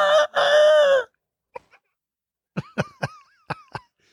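A chicken lets out a loud, drawn-out squawk, then after a brief pause clucks in a quick, choppy series of short bursts, clear with no talking.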